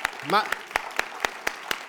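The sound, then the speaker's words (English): An audience claps together in a steady, even beat, about eight sharp claps in under two seconds, with a brief voiced exclamation rising over the start. “Everybody start clapping. This is how your circle sound.”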